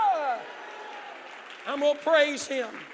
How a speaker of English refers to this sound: I wish somebody would jump to your feet, clap your hands, and shout hallelujah.